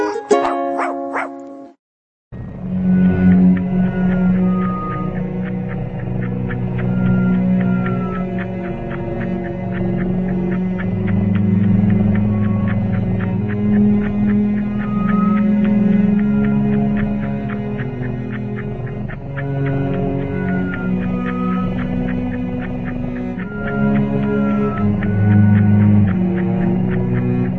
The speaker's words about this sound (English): Pretty cool or what? You're listening to music that is specifically made for cats. That was so soothing. That could put me to sleep. You hear the purr in there and all that?